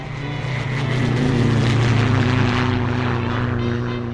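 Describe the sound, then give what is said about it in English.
A propeller airplane drones steadily overhead, its engine hum swelling slightly louder in the middle before easing off, with a continuous buzzing whir and no voices. “By the time I'd gotten 200 feet off the ground, I knew I had to fly.”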